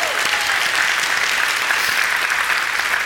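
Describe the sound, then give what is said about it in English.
An audience at a service claps steadily for a few seconds, a dense, even wash of many hands applauding at a constant loud level with no talking over it. “you could stand up, and we'll just clap for you again.”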